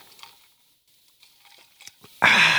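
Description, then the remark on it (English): Someone in dark, rainy Phoenix, Arizona takes a drink of tonic water: a few faint, soft clicks and slurps, then a sudden loud, steady fizzing hiss that carries on to the end. “And before we continue, let me take a sip of this fine tonic water.”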